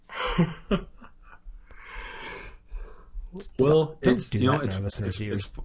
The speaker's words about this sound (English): Don't do that in our listeners' ears, …. What, the yawning?